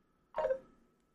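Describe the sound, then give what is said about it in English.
A phone notification alert from a phone in a pocket sounds once, a short bright electronic chime that rings out and fades within half a second, with no voices around it. “My phone just notificated so loud, I heard it get picked up on the mic.”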